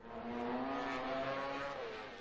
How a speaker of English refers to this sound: 240 horsepower, 200 miles per hour, two wheels with no roll cage. This is the world of motorcycle road racing, the pinnacle of motorsport.